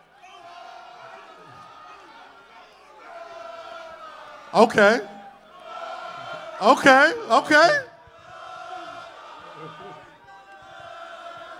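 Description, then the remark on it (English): A large live arena crowd at a wrestling event roars and chants steadily throughout, swelling with several loud whooping shouts in the middle, and a brief spoken word slips in over the noise. “Jimmy, Jay, Solo, you hear the crowd. You hear the energy, every arena you go to, every place y'all go to, every city y'all touch down in.”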